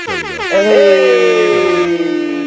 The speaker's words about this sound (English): He's talking about doing the air horns.